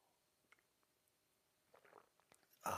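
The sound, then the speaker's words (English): A quiet slurping sip of coffee with faint mouth clicks, followed by a sudden louder breathy burst at the very end. “It's called the simultaneous sip, and it's going to happen now.”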